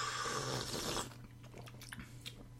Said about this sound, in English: First off, take a big sip of that beautiful Celestial Seasonings tea.